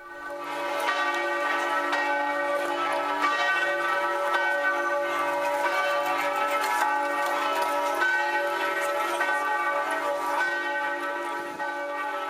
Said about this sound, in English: St. Mark's in Venice. Here are the bells at St. Mark's.